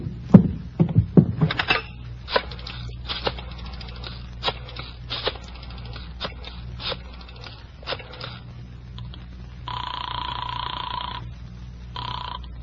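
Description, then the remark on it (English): A receiver is lifted with a few clunks, followed by a run of sharp dialing clicks. A single loud, buzzing telephone ring sounds near the end. Clear, with no talking. “Where's the phone? Right over there.”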